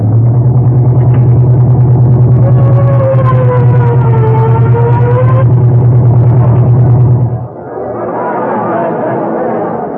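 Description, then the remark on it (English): A car engine drones loudly and steadily as the car is driven fast toward the Crescent Garage on the east side, with a faint rising whine partway through, then cuts out near the end as a murmur of crowd voices takes over. “Yeah, step on it,”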